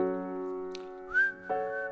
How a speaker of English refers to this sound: And if you've heard it and you know the whistling, maybe you can whistle this part, since I can't whistle.